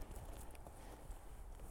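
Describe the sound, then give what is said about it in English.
A person's footsteps crunch over icy ground in the evening in a steady walking rhythm, each step a quiet, gritty scrape against a low outdoor rumble, with no one talking. “I mean, I'm actually listening to my footsteps, and as I'm looking around, I knew the ground was getting a little icy, so you can hear the crunching more.”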